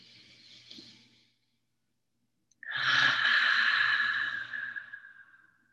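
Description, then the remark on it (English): A soft, breathy rush of air fades out, then after a short pause a long, deep, loud breath streams through before easing away, with no talking. “Maybe it's our breath, breathing in. It's like, yes, this is such a rich inhale.”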